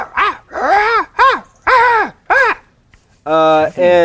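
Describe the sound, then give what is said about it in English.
A human voice imitates the bird-like cawing language of creatures in a cave in a D&D game: five loud, rising-and-falling raspy caws in a quick, uneven series, then a short pause and two steadier, more nasal drawn-out calls. “They have this sort of like cawing, like bird like language.”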